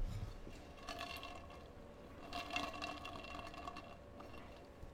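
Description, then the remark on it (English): Quiet sips of water, with soft slurping and liquid sounds coming in a few brief bursts against a low background hum. No one speaks. “So I'm going to get a quick sip of water before we go into the ad for today and the sponsor of today.”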